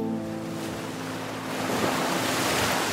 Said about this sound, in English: The tides came in and the waves got closer. Our castle got swallowed up by water. The tide came in and the waves got closer.